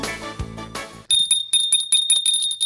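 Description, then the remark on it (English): A short musical sting gives way to a small, bright dollar-store bell rung rapidly over and over, clear, its high metallic ding repeating in quick bursts until the end. “There it is, dollar store bell.”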